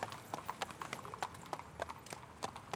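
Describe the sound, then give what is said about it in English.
Pony hooves clip-clop in the distance with a cart, a pony train bringing supplies to a railroad camp on the dry, dusty, windy Wyoming steppe in 1868: a quick, uneven run of sharp, hollow knocks, about fifteen in under three seconds, over a low steady rumble. “An immense sky spreads out over the steppe below, and hooves sound in the distance, followed by a cart.”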